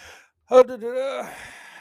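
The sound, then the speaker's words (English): Some Democratic members in the House chamber audibly gasp: a sudden sharp gasp breaks a brief silence, then stretches into a drawn-out, falling voiced 'ohh' of surprise that fades over about a second, fairly loud. “But some Democratic members in the chamber audibly gasped, probably to virtue signal more than anything.”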